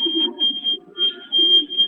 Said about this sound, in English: I just heard a lot of screeching, and that would not be helpful to our discussion. That was the door there.